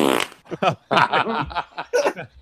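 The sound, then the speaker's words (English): A voice blows a series of short, sputtering fart-like raspberries, several quick bursts in a row mixed with snickering laughter. “So that was just wasabi rice and panda fart.”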